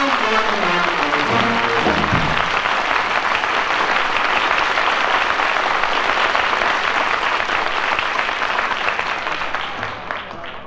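A large crowd applauds loudly and steadily for about ten seconds as the final notes of a song fade out underneath, then the clapping begins to thin toward the end.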